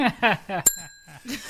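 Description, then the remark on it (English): A single bright bell ding, like a small desk or bicycle bell, struck once to mark a pun and left to ring out with a clear, sustained tone while people keep talking around it. “That's not going to go by without a bell, I'm sorry.”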